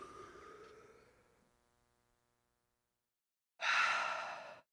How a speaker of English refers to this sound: Maybe we all need to take a deep breath. So we'll do three breaths.